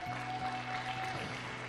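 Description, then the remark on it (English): An audience gives the Lord a steady round of applause, a dense wash of many hands clapping at even strength throughout, with sustained musical tones humming underneath. “Come on, let's give him a great round of applause.”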